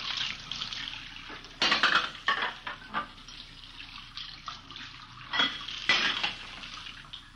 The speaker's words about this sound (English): We found her in the kitchen washing dishes. I just got a couple more to rinse.